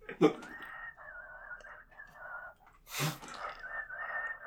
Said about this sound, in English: I can whistle through my nose pretty well.